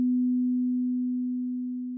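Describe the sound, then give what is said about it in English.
A single low, pure bell tone rings steadily for about two seconds, fading slightly as it sustains, with no voices or other sounds around it. “So that's the bell.”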